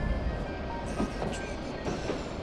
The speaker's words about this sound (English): Pay no mind to our train's backwards motion, dear traveler. We are now passing through decades of the past.